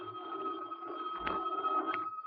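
A telephone rings in a cheaply furnished room of a theatrical hotel in Buffalo, New York, nearly noon, with a steady, shrill tone that holds throughout at moderate loudness, with a couple of brief clicks along the way and no voices.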